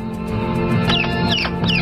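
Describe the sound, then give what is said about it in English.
A pet parrot, Chico, squawks three times in quick succession, each call a shrill, downward-swooping screech, recorded on a mobile phone and played over a tannoy from a car driving around Devon, heard over a steady background hum with no talking. “So on a mobile phone, she recorded Sausage's brother, Chico, and then played his lonely squawks over a tannoy as she drove around Devon.”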